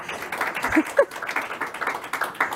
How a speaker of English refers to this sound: They're already happy to see you, as you can hear. I guess you can hear that clapping. They're so happy to see you.